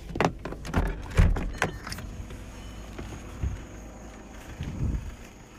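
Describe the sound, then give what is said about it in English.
A rolling drawer unit without shelves rolls open with a rumbling slide and several clunks and rattles early on, followed by quieter handling noises and a soft thump near the end. “You are a rolling drawer that doesn't have the shelves. I don't think you have the shelves. Let's take a look.”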